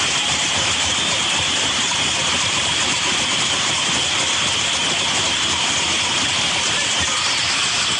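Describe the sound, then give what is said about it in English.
A dense, steady wash of audience applause as the governor is introduced, many hands clapping at once into a continuous hiss-like roar that holds at an even, fairly loud level for the whole stretch, with no voices. “Are they applauding? Yes.”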